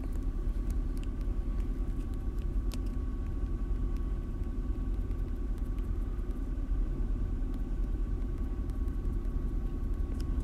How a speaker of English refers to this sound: It's windy as fuck.